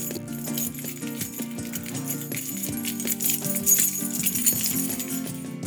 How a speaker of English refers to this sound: Organically made sounds of car keys.